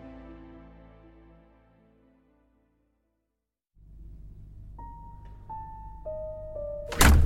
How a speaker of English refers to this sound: I woke abruptly. Was that the door? The room was still dark. Someone was inside, heading downstairs.